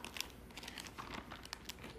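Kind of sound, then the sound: household object, turning book pages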